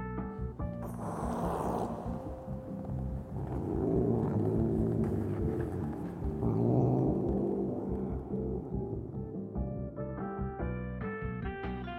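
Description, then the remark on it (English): A cat named Oscar growls low in its throat while staring at a dark hollow in a grove near a hospital's basement windows, a steady rumbling snarl that swells and rises into whining, tonal yowls before settling again, with no one speaking. “As Dan came closer, he heard a low growl come from deep within Oscar's throat.”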